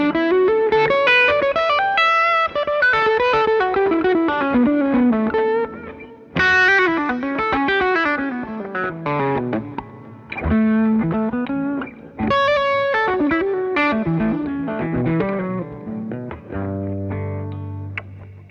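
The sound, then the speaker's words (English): A distorted electric guitar plays smooth, flowing legato lines with sustained notes and quick runs, loud, no voices, with occasional brief pauses between phrases. “And then you put a little bit of distortion on it.”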